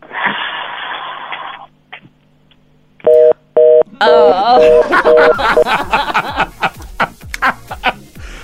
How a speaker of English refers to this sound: Okay, yeah, let's dial the number again, see what's what.